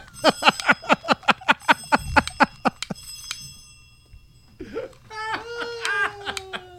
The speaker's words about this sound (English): I love the bells.